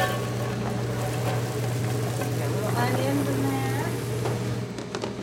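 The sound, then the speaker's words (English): Chopped onions are poured into a hot pan with a loud, steady crackling sizzle that fills the whole moment, over a constant low hum from kitchen equipment. “I love that, just pouring it in.”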